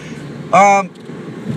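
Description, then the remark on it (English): Steady low rumble of a car moving along a road, heard from inside the cabin, with a short burst of a person's voice partway through; the car is being driven west toward the ocean, headed over to Stard's. “Is this the first Hey Gang in a vehicle? I think so. First car gang.”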